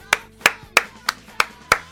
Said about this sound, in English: Am I the only one applauding for you all? I hope not, because it's because of you all. So thank you very much.